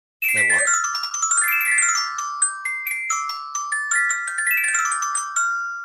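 A short, bright musical jingle of chiming, bell-like tones, opening with a quick descending flourish and then a steady run of plucked notes, loud and close with no talking.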